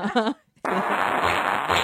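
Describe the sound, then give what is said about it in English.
A short voiced sound, a brief pause, then a loud, sustained sputtering fart noise lasting over a second, probably made by a person's mouth rather than real. “It's really a fart sound.”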